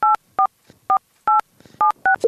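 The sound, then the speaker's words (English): A quick run of touch-tone keypad beeps as a phone number is dialed to test a call, about seven short dual-tone presses in an uneven rhythm, loud, with faint rustling between them and a softer tone at the end. “I gotta call your phone.”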